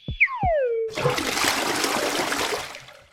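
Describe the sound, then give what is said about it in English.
A quick falling whistle gives way to a steady splashing stream of urine flowing from the bladder through the urethra into a toilet, running continuously for a couple of seconds with no talking. “The urine then flows from your bladder out of your body through your urethra.”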